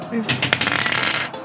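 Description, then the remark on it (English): Dice tumble across a table in a quick, bright clatter of hard clicks lasting just over a second, then come to rest, rolling a natural 20. No one speaks. “I rolled a nat 20.”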